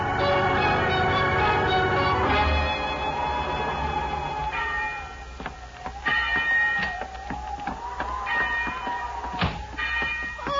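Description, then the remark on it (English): A bell rings over and over, rung by a woman, each loud strike leaving a sustained, shimmering tone that overlaps the next, with no voices present. “She's been ringing the bell.”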